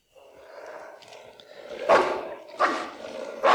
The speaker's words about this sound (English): There's for some reason a pit bull in this men's room. Yeah, chained up dog. Yeah, like an actual dog